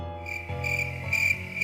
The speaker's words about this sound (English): I will probably actually put crickets in for this one. I never do crickets. I will find a sound effect for this episode.